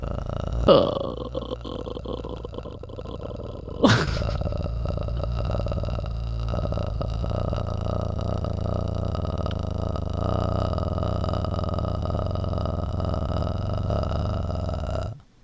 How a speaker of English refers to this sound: Sounded like a burp.